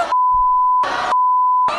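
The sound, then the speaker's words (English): A steady, high-pitched censor bleep covering swearing holds for over a second and a half, broken up by brief loud bursts of voice at the start, in the middle and at the end. “You got to bleep one single word, though.”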